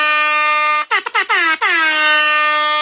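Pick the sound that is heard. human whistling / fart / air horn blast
air horn blast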